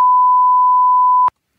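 A loud, steady censor bleep, a single pure high-pitched tone lasting just over a second that covers a rude word, then cuts off abruptly into silence. No voices are audible over it.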